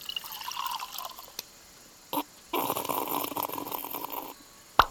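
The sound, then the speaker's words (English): A fizz pop lemonade is poured into a glass in a steady splashing stream lasting about two seconds, with a brief liquid gurgle just before and a sharp clink at the end. No one speaks. “Would you like a raspberry lemonade or maybe the cucumber honey? I'll take the fizz pop.”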